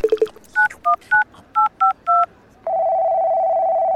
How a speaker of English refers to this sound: I need to make an important phone call, but I'll catch right up.